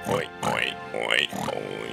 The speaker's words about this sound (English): provide us with a warning pig, because there is adultish content.